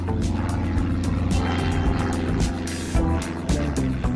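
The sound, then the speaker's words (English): A tiny propeller plane's engine, boarded at Heathrow Airport in London before sunrise, drones loudly and steadily, a low humming roar with rapid rhythmic pulsing from the spinning blades, continuous throughout with no voices. “A few weeks ago, I got up well before sunrise, made my way to Heathrow Airport in London, and got on board a tiny propeller plane.”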